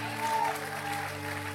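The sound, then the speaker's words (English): An audience claps in a steady, dense burst of applause, with voices shouting underneath and a low sustained tone running through it at an even, moderate loudness. “If you believe that, give him a hand clap and a shout.”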